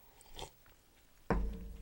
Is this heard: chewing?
yes